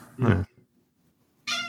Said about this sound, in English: Are you abusing a cat? No, I've just got a very whingy cat.